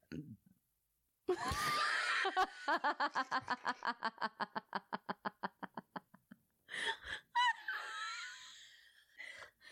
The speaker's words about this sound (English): That sounded so loud in my headphones. I apologize for that belch. That was like the throatiest belch.